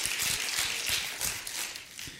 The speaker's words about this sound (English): Come on, somebody give the Lord a hand clap and a shout.